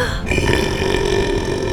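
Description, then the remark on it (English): A single long, loud burp sound effect rumbles continuously for nearly two seconds, deep and gravelly with a sustained, resonant tone and no talking. “Sasha and Mungo and all of the stars and everything else Belch has ever swallowed up are expelled in one mighty, world-shattering burp back out into the universe.”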